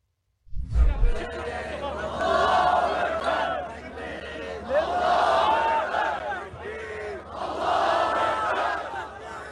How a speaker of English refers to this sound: Thousands of people cheering.